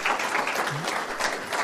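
Steady applause from an audience fills the room, a dense wash of many hands clapping at even loudness throughout, close and continuous without a break.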